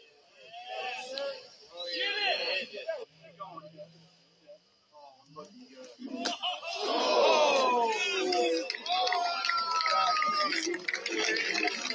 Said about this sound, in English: We hear all sorts of groans coming from the crowd and reaction. It skipped off the stump.